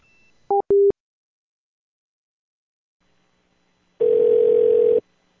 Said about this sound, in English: I need to hang this phone up.